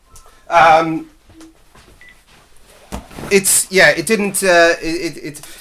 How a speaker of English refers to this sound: Sorry, the phone was just going. I just switched it off.